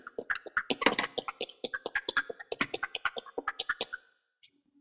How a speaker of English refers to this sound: Then you're going to scoop some ice, put it in a little shaker, shake it up.